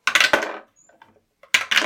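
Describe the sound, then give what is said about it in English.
Dice clatter and tumble across a table in two bright bursts, with faint scattered clicks between them as they settle; fairly loud, with no talking. “So, let's grab dice because I have questions.”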